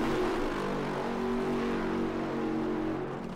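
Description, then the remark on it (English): A nitro funny car engine, Robert Height's car in the funny car final, starts and roars loudly, a dense, steady rumble with a low throbbing drone that holds for a few seconds with no voices. “Robert Height's car hasn't started yet.”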